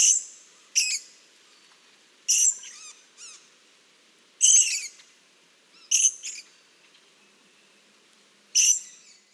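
Sharp, high-pitched calls of a purple-crowned lorikeet, an Australian lorikeet, burst out in short bursts, about six of them at irregular intervals, loud with quiet gaps between.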